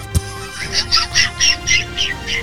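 A run of about eight harsh, squawking gull calls in quick, steady succession, loud against a faint background hum, with a brief thump at the start.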